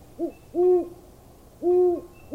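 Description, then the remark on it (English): An owl hoots at night in a steady rhythm, a short lead-in note followed by two longer, low, mellow hoots about a second apart, against a quiet night background. “The nocturnal birds would begin to hoot and coo.”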